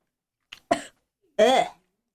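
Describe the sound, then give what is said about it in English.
A sharp cough bursts out after a tiny catch of breath, then a longer raspy, voiced hack follows a half-second later, as someone sputters after taking a shot that went down the wrong tube. “And take note that the man at the table is the only one not coughing or taking a chaser shot.”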